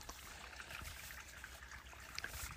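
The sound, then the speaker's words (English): Water trickles and burbles steadily along a small stream in a desert canyon river basin, a continuous soft splashing with occasional brighter drips, heard next to the water in the shade, with no voices. “But down here, next to the water, under the shade, it's probably”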